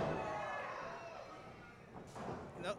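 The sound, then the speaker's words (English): A heavy body impact from a wrestler's shoulder block in a wrestling ring, a sharp thud followed by a second slam-like crash, over a constant hum of arena noise and indistinct voices. “Oh, big shoulder block.”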